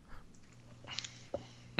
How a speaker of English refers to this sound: Sorry, I'm swallowing my egg roll.